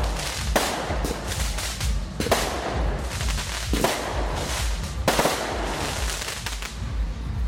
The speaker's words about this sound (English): Yeah. Enjoy the fireworks. Yeah. I wish you to be here right now.